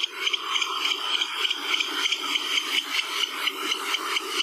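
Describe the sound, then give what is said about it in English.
A barn owl's click-click-click call: a fast, dry series of clicks running steadily for several seconds with a rattling, slightly hissy high-pitched texture and regular pulses, with no one talking. “Another common one is the click-click-click call, which sounds a bit like its name, and is also usually given by the male when it's bringing food back to its nest.”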